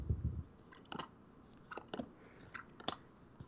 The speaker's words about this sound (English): And it was a deck, and it had three sets of cards, one for dungeon, one from urban, and one for forest. And the idea is you shuffle the deck, like I'm doing now, mm-hmm.